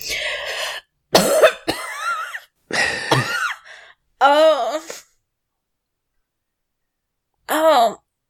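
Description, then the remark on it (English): A voice acts out a fit of coughing by a character regaining consciousness: four harsh, rasping coughs in quick succession, then a strained voiced gasp, a pause, and one short groaning breath. “So Vons gets back, is relaying this information, and Erisine coughs and regains consciousness.”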